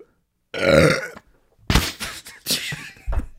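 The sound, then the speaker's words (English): A loud, drawn-out burp after drinking lager beer rumbles for about half a second, followed by a stretch of people talking and laughing. “I had to combat your fart with my burp.”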